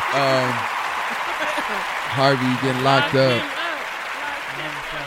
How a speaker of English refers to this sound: Either way it go, we're going to give it a round of applause.